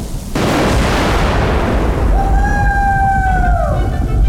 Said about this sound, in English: Good old Zeus! The lightning struck the shovel and made it glow like St. Elmo's fire. And that same glow raced down the copper wire toward the ground below and the iron grate